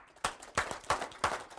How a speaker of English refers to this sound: So now clap your hands a few times.